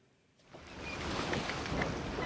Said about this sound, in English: Oh, I love it when we have the boat sound.